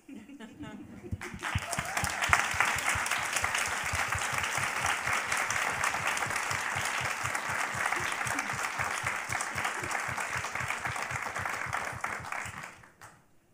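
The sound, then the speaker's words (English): Sustained audience applause: dense, steady clapping from many people at an even loudness for about twelve seconds, then fading quickly at the end. “I just applaud”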